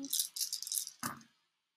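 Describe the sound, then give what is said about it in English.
Dice, counted out for a roll, rattle briskly in a cup or hand for under a second, then tumble out in a single clattering spill that quickly dies away. Fairly loud, with no talking. “Let me just count out the dice.”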